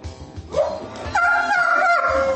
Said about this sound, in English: We have dogs coming back to the White House, everyone. Congratulations to Champ and Major, President-elect Biden's two German Shepherds.